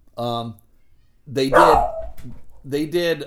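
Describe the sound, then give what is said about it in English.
A dog named Ween Dog barks in three drawn-out, loud bursts, each one tonal and slightly howling, with short pauses between them. “Ween Dog, get over here. I'm telling a story, Ween Dog.”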